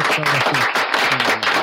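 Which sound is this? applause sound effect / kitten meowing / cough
applause sound effect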